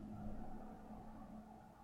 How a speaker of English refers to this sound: Oh my god, with these cars.